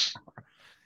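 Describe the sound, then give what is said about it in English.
A single quick sneeze, a sharp hissing burst at the start that fades into a few soft low bumps and breathy noise, fairly quiet and short. “Bless you.”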